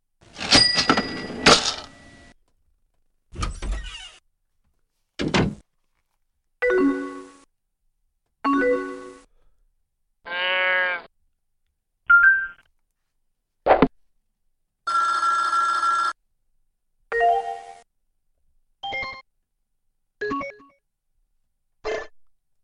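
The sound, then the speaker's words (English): A string of about a dozen short AOL Instant Messenger alert sounds, chimes, bell-like tones and door open-and-close effects, played one after another with brief pauses between them. Loud and clear, no talking. “Those are the sounds of no other program than AOL Instant Messenger.”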